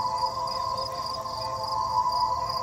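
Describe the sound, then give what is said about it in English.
Steady outdoor cricket chirping fills the air, a continuous high, pulsing trill with faint background hum and no talking, moderately loud and constant throughout. “the crickets are at out. At least the crickets can come through on the mic”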